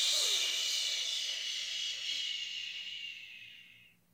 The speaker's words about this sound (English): We're going to breathe in through our nose again. Let's try it one more time. In through our nose, out our mouth.